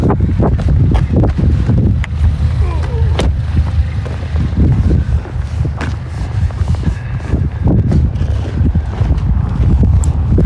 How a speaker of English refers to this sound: Yeah, so there's a bit of breeze, as you can probably hear, and it's a little cool, not bad. And you can hear the snow crunching underfoot.